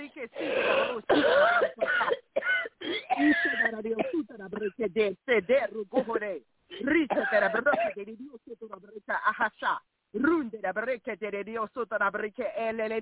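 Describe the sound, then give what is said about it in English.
A woman coughs and clears her throat repeatedly in short, rough bursts during a deliverance prayer, interleaved with other voices talking, all sounding thin and narrow as if heard over a phone line. “Cough, honey.”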